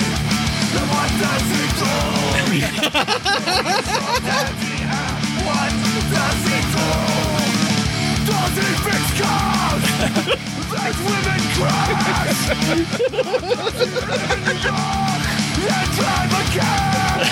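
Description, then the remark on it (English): A loud, dense heavy metal track pounds along with driving drums and distorted guitars, and a harsh screamed vocal sits in the mix throughout. “Oh, I swear to God, it sounds like fucking … screaming.”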